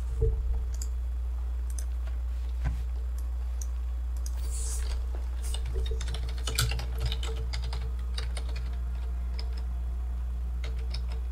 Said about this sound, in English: You hear intense typing on the other side. Yeah, you do.